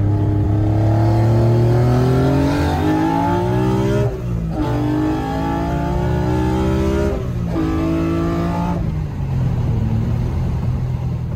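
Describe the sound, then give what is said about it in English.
The naturally aspirated straight-six engine of a Nissan (Datsun) 280Z, making over 350 horsepower to the wheel, revs hard toward 8,500 RPM through rising pitch sweeps, dropping briefly between gear changes before climbing again, loud with no talking. “So it's a straight six in a 280Z with this head revving to 8,500 RPM.”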